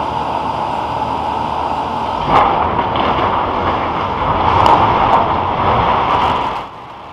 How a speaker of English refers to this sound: we talked about this a week or two ago about the Arecibo telescope and how it was like on the verge of collapse. Well, sadly, the thing actually did finally completely collapse. And there's a video of it that's pretty wild to watch.